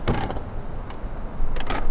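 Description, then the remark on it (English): A wastewater sampler machine in a little plastic cabinet at the wastewater treatment plant in Fort Collins, Colorado, runs through its cycle taking a sample: a short burst of mechanical whirring at the start, a steady low hum, then a louder, rougher motor whir near the end. “Oh, it's taking a sample right now.”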